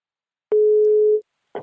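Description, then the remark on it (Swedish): A telephone ringing tone on an outgoing call: one steady, clear mid-pitched beep lasting under a second, a short silence, then the start of the next beep. No voices. “Nu ringer vi. Mm. Måtte jag slagit ett nummer. Ja, måtte någon svara. Det låter som Malins nummer. Men signal.”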